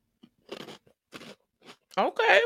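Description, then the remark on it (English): Crunching on crisp, spicy sweet potato chips: three separate crackly bites spaced about half a second apart, followed by a person briefly speaking at the end. “It has a nice crunch, nice spice.”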